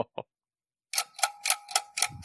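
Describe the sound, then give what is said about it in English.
A millennium clock starts to tick steadily and loudly. A pair of faint clicks and a short silence are followed by a fast run of sharp, even ticks. “I think we better check the time as the millennium clock has started to tick.”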